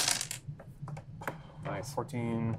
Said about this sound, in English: Should I roll and then half it, or just half the dice?